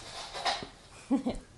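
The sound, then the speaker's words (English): A dog licks a person's earbuds, making a few wet smacking and slurping sounds in short bursts, fairly quiet with a faint murmur in between. “Doggy licking on Elsie's earpieces.”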